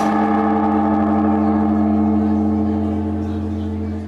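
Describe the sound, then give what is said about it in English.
A huge temple bell at Zojiji Temple in Tokyo hums with a deep, steady resonance after priests and members of the public swing a wooden pole against it to ring in the new year, ringing loud with layered overtones that slowly start to fade. “on the grounds of the Zojiji Temple in Tokyo, priests and members of the public took turns swinging a wooden pole against the huge bell to ring in the new year.”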